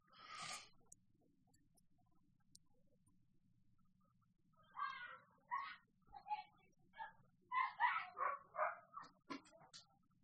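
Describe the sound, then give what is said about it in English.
A dog outside barks over and over for minutes without stopping in quick, uneven bursts, a lone yap first, then a rapid string of sharp barks and yips, heard through closed doors and windows. The barking is moderately loud against a steady low hum. “and sometimes he'll just bark, like, for, like, minutes at a time, like, without stopping, and there's just nothing I can do about it, so, apologies to everyone who might be hearing a dog barking incessantly for the past couple minutes.”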